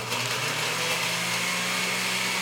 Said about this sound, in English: Let's go. I'm going to blend. Blender!